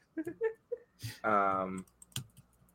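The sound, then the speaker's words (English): A few scattered, irregular clicks of typing on a computer keyboard as a name is typed into a chat, broken up by a person's voice holding a drawn-out vocal sound in the middle. “This is the most I've ever seen someone struggle at typing.”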